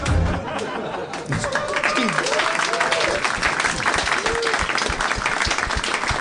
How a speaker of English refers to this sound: You know, if you don't feel it deserves an applause, you don't need to applaud. I'm just saying.